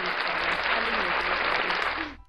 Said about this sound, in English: Where is that thing? We're getting claps.